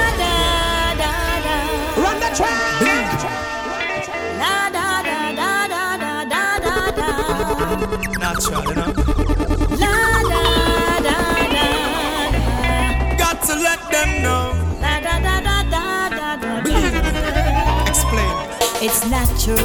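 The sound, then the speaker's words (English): A loud, steady music track plays throughout with a heavy pulsing bass beat, layered melodic instruments and occasional rising, siren-like synth swoops, with no talking over it. “let me give you a couple of tunes from the …”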